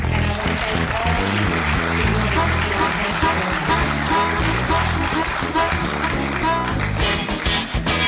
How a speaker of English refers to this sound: I'd like to, if you would, please give them a round of applause.